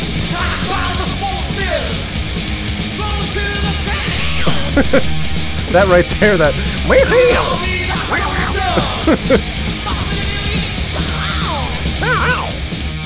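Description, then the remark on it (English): Loud, dense 1980s-style rock music with high, strained screamed vocals wailing over driving guitars and drums, steady throughout, with a voice briefly speaking over it. “Yeah, I mean, they've got the very stereotypical 80s scream vocals.”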